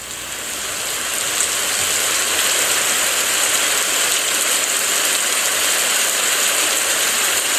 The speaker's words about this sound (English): Let's take a short break and listen to me start the Sleep Sounds capsule. Hi, Bixby. Ask Sleep Sounds to play rain sounds.